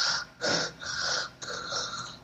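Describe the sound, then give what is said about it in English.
Heavy, raspy breathing right up against a microphone, about four loud wheezy breaths in quick succession with no talking. “you get two technicals for the breathing”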